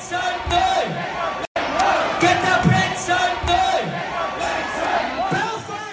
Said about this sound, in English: And some of those include, you know, them chanting "Get Your Brits Out" at concerts, causing the group or the crowds to also chant that.